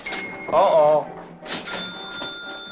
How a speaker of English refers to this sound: Somebody just made it. Made what? Every time you hear a bell rings, it means that some angel's just got his wings.